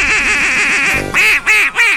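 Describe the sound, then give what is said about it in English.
A duck call quacks loud, first in a quick, rolling string of short quacks, then three separate drawn-out quacks with brief pauses between them. “That's a duck.”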